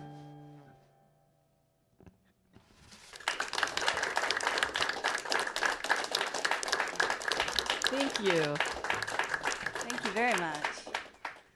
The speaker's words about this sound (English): Clapping in your cars. It's amazing. You radio folks can't see this, but everybody here is in a car. It's like being at the drive-in, actually.